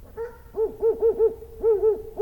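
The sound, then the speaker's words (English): An owl hoots in a quick series of low, tonal calls, several hoots in a row with a short pause midway, clear with no one talking. “Because of damn owls.”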